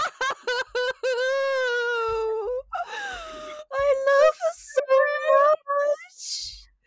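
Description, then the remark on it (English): A kitten meows repeatedly and loudly: a few short cries, then a long drawn-out wailing meow, followed by several more insistent mews with brief pauses between them. “No, you get to have some kitten response ASMR.”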